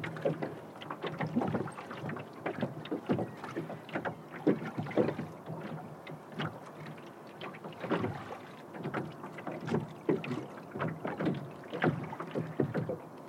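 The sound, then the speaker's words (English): A rowing boat moves across a lake in the early morning, oars dipping and pulling in a steady repeating rhythm with splashes and creaks, soft wind noise underneath, no voices. “This time we are on a rowing boat out on the lake in the early morning.”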